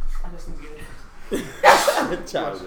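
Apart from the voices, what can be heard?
sneeze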